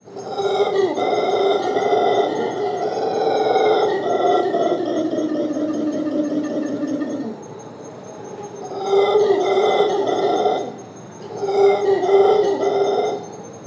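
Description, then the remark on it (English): Deep, rasping howls of howler monkeys roar continuously for several seconds, drop briefly, then return in two more loud bursts, with no talking. “What wasn't so cool was being woken up in the middle of the night by the howler monkeys.”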